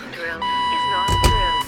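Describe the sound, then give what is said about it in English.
A security hand scanner gives one long, steady electronic beep at a single mid-high pitch, holding for over a second while muffled voices and a brief rumbling thump sound underneath. “Come on, put your hand over this. The scan.”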